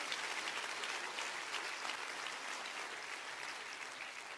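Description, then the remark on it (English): An audience claps their hands together, a dense, steady wash of many overlapping claps at even loudness for the whole stretch, with no voices standing out. “Clap your hands and say, "I believe that. I receive that in Jesus' name."”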